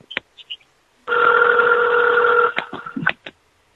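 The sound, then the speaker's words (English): A telephone rings with one steady, buzzy electronic tone lasting about a second and a half, framed by a few sharp clicks and handling taps before and after. No one speaks. “I want to answer that phone. It's ringing.”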